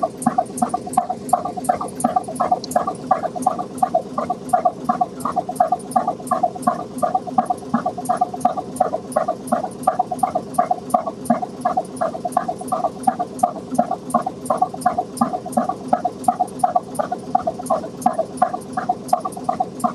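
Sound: boat engine running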